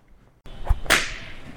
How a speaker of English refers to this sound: Is that a flogger? Someone's gotta be having a good time.